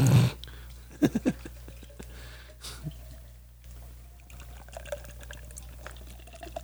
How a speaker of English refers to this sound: So we're pouring 16-ounce cans. It's got the widget. Yeah, I like, you can buy the bottles, but don't. Like, pay the extra for the cans. Oh, that's a beautiful Cascade.